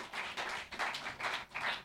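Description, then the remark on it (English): An audience claps for the Lord together in a steady rhythm, dense bursts of hand claps swelling about twice per second, loud and sustained with no talking over it. “Oh, you can give the Lord a clap.”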